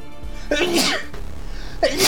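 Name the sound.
sneeze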